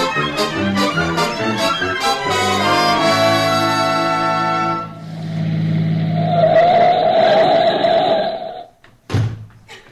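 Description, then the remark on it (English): A car engine revs loudly through several rising bursts, then settles into a steady roar as the car drives off, ending with a brief thud. No one speaks. “We'll jump in the car and be there in a few minutes.”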